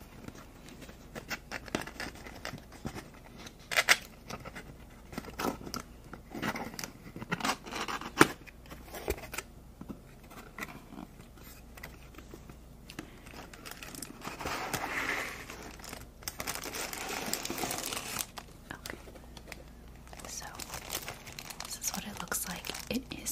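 Packaging for a compact Conair hair dryer is opened with irregular crinkling, rustling and small clicks, building into a denser, brighter stretch of tearing and crumpling partway through before settling into softer handling.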